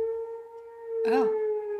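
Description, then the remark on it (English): A civil defense siren holds a steady, sustained wailing tone throughout, fairly loud and unbroken, with a brief vocal sound cutting in over it near the middle. “Oh, siren. Sound the alarms.”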